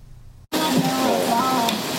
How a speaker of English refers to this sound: A super thick 3-centimeter patty sizzles on the grill.